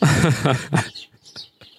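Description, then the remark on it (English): A brief low vocal sound gives way to a few short, high-pitched bird chirps, spaced irregularly and fairly faint, in the background. “That's his birds, not my birds.”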